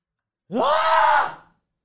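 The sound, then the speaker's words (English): A man lets out a single drawn-out scream lasting about a second, rising in pitch then holding, sounding slightly off-mic and roomy, with silence before and after. “That was me screaming not directly into the mic.”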